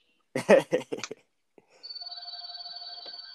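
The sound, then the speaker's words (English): A house phone starts ringing with a steady electronic trill, a rapid warbling tone that keeps going to the end, after a short burst of voice-like sound at the start. “As my house phone rings.”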